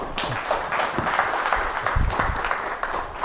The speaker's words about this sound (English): But please join me in a round of applause for General O'Shaughnessy.